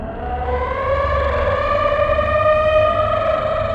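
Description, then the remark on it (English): A long, deep howl from a nobleman's castle at night under a full moon, more monster than animal, rises at the start and then holds steady, a loud wailing tone rich in overtones over a low rumble, with no speech. “As the moon arced to the top of the night sky, the villagers heard an awful howl from the nobleman's castle.”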